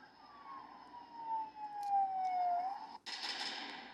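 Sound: police car sirens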